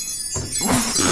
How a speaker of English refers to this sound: Tim walks to his car, jingling his keys in his pocket.